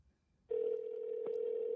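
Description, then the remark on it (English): After a brief hush, a steady, unbroken telephone tone starts and holds as a phone call is placed, loud, with a single sharp click partway through. No one speaks. “Let's call him up.”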